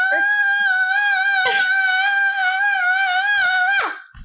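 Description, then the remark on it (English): A voice imitates a monster's agonized shriek: one long, high-pitched, strained wail held steady for nearly four seconds, loud, wavering slightly before breaking off abruptly. “It shrieks in agony.”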